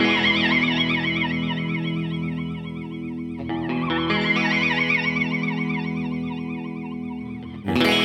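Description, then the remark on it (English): Sustained electric guitar chords through an Old Blood Noise Endeavors reverb pedal switched to its flanger mode, harmonics swirling up and down in a wavy, jet-like whoosh, loud, with a brief strum near the end. “It's reverb and then a bank of other modes. I'm going into flanger.”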